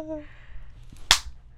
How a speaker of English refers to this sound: I'm gonna like you slap me. I'm gonna to all the audio listeners, she did slap me.